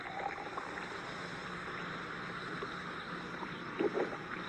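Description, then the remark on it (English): Antacid tablets dropped into water fizzing in a Bromo-Seltzer advertisement, a steady crackling hiss of tiny bubbles that holds an even level throughout, with a couple of brief louder bursts near the end and no voices. “Now you can drop these in water and wait, or you could take a Bromo Seltzer.”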